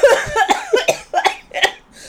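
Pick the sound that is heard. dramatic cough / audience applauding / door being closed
dramatic cough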